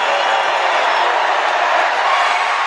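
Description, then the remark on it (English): A crowd cheering and roaring after the opponent misses two consecutive free throws, which wins everyone a free slice of pizza from Slice of Vegas in the Mandalay Bay Shops. A dense, steady wall of noise stays loud and unbroken for a few seconds, with no single voice standing out. “We'll let the crowd tell you what happens.”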